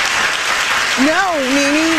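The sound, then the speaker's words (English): Steady, dense applause from a crowd clapping in agreement with remarks about NeNe fills the whole stretch, with a single voice calling out over the clapping about halfway through. “Now, clap if you understand what I'm saying.”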